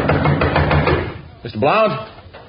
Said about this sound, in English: There's no need to break down the blooming door. I'm sorry if I pounded too hard, but I thought...